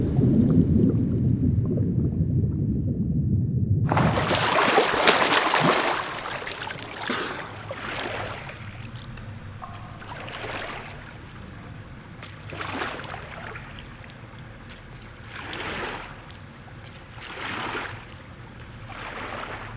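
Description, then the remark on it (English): Muffled low underwater rumbling gives way to loud ocean water splashing and swirling, with rhythmic surges every few seconds as the water churns; no voices. “What awe-inspiring underwater ocean is this now? As I doggy paddle for life, I cannot help but wonder what horrors lie beneath the water.”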